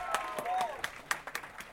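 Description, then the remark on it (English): An audience claps in a brief, scattered burst of applause for a woman showing off her off-the-shoulder outfit, with uneven sharp claps and a rising whoop of a cheer mixed in. “Round of applause.”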